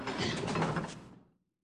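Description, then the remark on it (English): An unlocked door swings open with a broad mechanical creak and rattle lasting about a second, fairly loud, then fading to silence. No voices. “yeah, and the nice little ending where the door's not even locked.”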